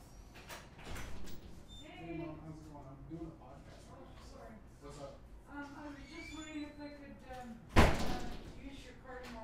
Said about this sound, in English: That's a door. That's a door. Probably your mom.